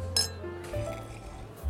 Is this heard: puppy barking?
no